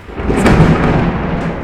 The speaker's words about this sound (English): Wowza. That was a beautifully timed clap of thunder.